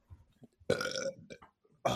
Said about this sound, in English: I'm just burping into the fucking mic. Fuck it.